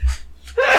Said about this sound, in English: I'm going to sneeze. Uh-oh.